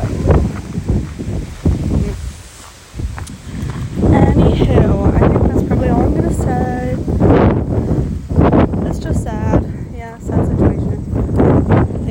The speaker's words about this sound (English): Sorry if it's windy. I mean, sorry if you hear it. It is windy. I know.